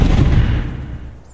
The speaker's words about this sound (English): There is an explosion.